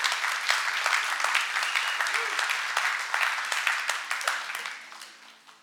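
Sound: audience clapping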